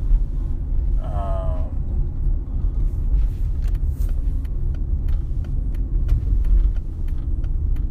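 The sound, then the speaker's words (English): Semi trucks rumble past, a heavy, continuous low engine drone filling the whole stretch, with a brief high-pitched whine early on and scattered light clicks above the roar. “These big semi trucks or whatever.”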